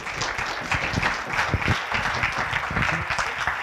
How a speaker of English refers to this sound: All right, let's give a bigger round of applause than that